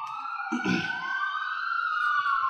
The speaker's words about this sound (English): You hear that? The city's going to hell in a handbasket. Yeah, was that a siren?